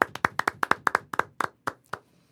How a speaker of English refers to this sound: Let's give a round of applause for Bryce Terry.